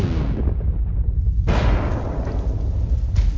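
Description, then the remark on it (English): A heavy, booming gunshot bursts out suddenly and rings on, with a second sharp crack a moment later, all over a constant low rumble; a woman has been shot, in a scene from the film Last House on the Left. No one speaks. “Did you hear that? Mary! She's been shot.”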